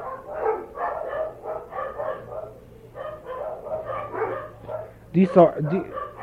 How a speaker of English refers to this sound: These are the dogs from the abandoned streets next to our home. I'm kidding. You know, in the villages in Egypt, when you hear the dogs bark at night, it's considered like a bad omen. It's a spooky thing.